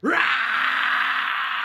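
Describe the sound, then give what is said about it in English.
A voice lets out a long, loud, strained yell in imitation of a piercing demonic scream, its pitch sweeping up sharply at the start and then holding harsh and raspy for nearly two seconds. “I throw off my coat and my wings sprout out and my talons go and I yell out a piercing yell of demonic fire.”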